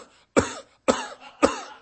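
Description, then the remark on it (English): A person imitates a sheep coughing out bugs killed by a drench squirted into its mouth: three harsh, husky coughs about half a second apart, fairly loud, with brief silences between and no talking. “They're coughing. 哇，一直咳。 And coughing out the bugs.”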